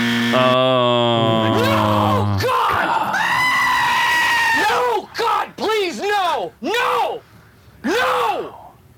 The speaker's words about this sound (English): Fun fact, I heard the goat screaming sound effect.